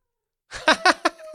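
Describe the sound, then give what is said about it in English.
A cat meows in a quick run of short, chirpy cries, three or four clipped pulses following a brief silence, with no one talking. “As we say that our cat meows.”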